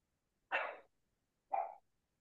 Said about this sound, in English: I think her dog was barking.